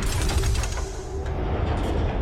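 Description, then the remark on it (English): After a combination is punched into its keypad, a heavy vault door grinds open with a loud, steady low rumble, a burst of rapid mechanical clanks at the start, and a harsh hiss throughout. No one speaks. “Sounds like it's opening, Steph.”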